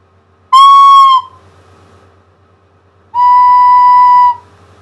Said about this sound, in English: I'm going to play my recorder twice now, once correctly by breathing into it, and once incorrectly by blowing into it hard. Can you tell which is which?